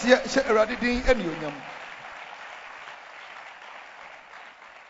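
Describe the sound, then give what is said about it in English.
A church audience breaks into sustained applause as a clap offering to the Lord, a dense wash of clapping that starts loud over brief voiced shouts in the first second, then settles into a steady, slightly softer patter that continues to the end. “Give the Lord a wonderful clap of offering.”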